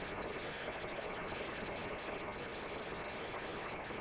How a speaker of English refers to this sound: Raining a little harder here for those of you who are not here and listening on the phone. I'm sure you get it all right, because it's going directly and electronically, but here it's getting pretty loud. It's all right. We love the rain.